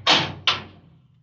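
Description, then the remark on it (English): A fire door leading to offices opens just a crack: two sharp clunks about half a second apart, the first louder, each fading quickly over a low steady hum with no voices. “Then, when the guard went to call Ross, the curator, the door opened just a crack.”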